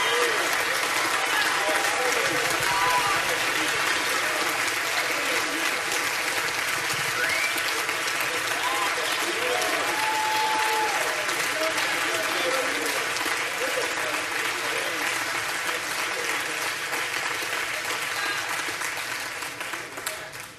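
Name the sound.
audience clapping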